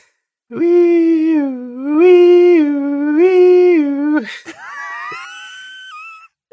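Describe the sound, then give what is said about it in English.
A single voice imitates the third of an ambulance's three different siren sounds, holding a strained, nasal tone that rises and falls in three long cycles, then ends with a short gasp and a wavering higher slide. “Ambulance sound three.”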